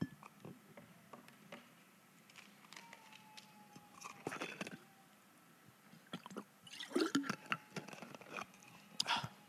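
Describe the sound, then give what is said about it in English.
Quiet plastic clicks and ticks as a bottle lid is twisted open, followed by a few soft sips and swallows of water, with no talking. “And I figured it was better to have to undo a lid than to preach with water just all down here.”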